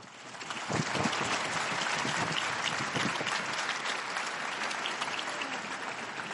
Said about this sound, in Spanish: Un aplauso para la nueva beata.